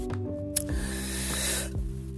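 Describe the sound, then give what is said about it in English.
A long, hissing draw of breath, like someone pulling hard on a blunt, rising for about a second over a steady humming tone, with a couple of faint clicks around it. “But I am hitting the blunt, so that's why I'm coughing.”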